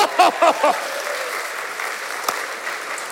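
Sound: audience round of applause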